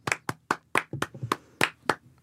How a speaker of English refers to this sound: Where's your applause? I need applause.